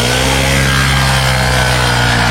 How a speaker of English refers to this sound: Much like a bird, leaf blower guy uses a very specific noise to try and attract a mate.